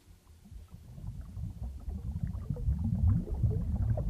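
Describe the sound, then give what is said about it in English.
Continuous low, churning fish tank water bubbling, like an aquarium pump, played by the Alexa "Fish Tank" skill on an Echo, with dense gurgling pops building gradually in loudness. No voices. “Here is 5 minutes of the fish tank.”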